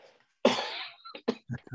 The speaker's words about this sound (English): Got this cough.